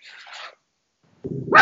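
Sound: dog barking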